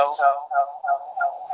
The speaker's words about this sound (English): Oh, there's the echo. Oh, boy. It's because I joined on my phone, and then I was still on my computer. Sorry.